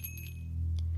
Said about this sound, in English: Magpie is startled out of her reverie by the sound of the bell above the door as she and her mom walk into the diner.